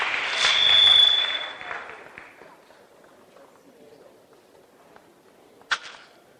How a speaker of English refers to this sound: Come on, give the Lord a clap and stand to your feet. Let's stand to our feet.